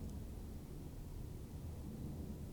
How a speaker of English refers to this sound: Why are there so many airplanes at all times? For what? Where are people going?